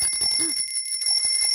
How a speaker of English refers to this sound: they're like, all right, I want you to ring a kid's bicycle bell